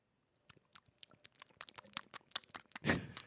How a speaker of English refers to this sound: Chew it up. What are you eating? Just chewing it.